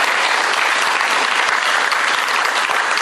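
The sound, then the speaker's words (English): A church audience claps steadily to thank the people who hosted and planned an event, a loud, dense wash of many hands blending into a continuous rattling roar with no pauses or voices. “So just give them a round of clapping, because that's hard work, putting that together.”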